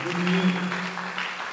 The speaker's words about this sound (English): Yes, if you are clapping hands, please clap it well. Clap it well.